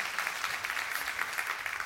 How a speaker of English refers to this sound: a big round of applause. Thank you guys for your willingness to share.